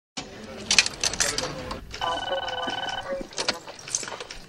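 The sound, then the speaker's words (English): A telephone rings with a steady electronic tone lasting about a second, set amid busy background bustle and indistinct voices that continue before and after the ring. “I knew it from the ringing.”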